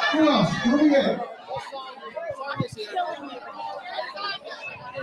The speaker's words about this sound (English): I'm trying to make my way through the crowd.